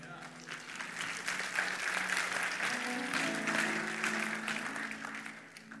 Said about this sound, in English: Don't just applaud here. I want you to serve here.